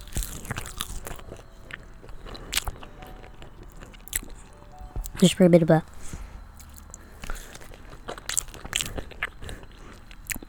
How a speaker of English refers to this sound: Here's some of the, I'm gonna eat a fry here.